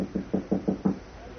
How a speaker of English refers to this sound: "I'll try the door." "Okay." "It's bolted." "Oh? All right, try knocking, but softly." "Right."